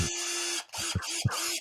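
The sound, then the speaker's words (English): A power drill whirs in a steady, buzzing drone with a constant low hum, stopping briefly twice, with soft low thumps between the runs. No one speaks. “I'm not going to ask why you have a drill.”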